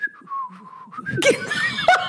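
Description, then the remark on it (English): A person whistles a short, wavering tune with an aggressive undertone that slides downward, clear, then the whistle breaks off into a burst of laughter. “But I know that whistle is a secretly aggressive whistle.”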